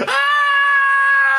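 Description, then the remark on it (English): A single shrill, sustained scream of a vampire being staked in a movie scene, holding one steady high pitch for about a second and a half, loud with no talking. “The vampire screaming.”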